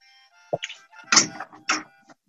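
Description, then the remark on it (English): A closet door in a basement in Charleston slides and shuts, with a few short knocks and rattling thuds over about two seconds, the loudest clatter in the middle, then quiet. “Should I close the closet door?”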